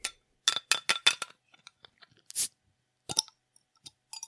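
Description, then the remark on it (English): A chilled drink can that had been in the fridge being opened: a run of crackly metallic clicks, a short sharp fizzing hiss, then a few scattered snaps and clinks, with no talking. “I think they're underrated for the purposes of podcasting because they come out with a very nice crisp click.”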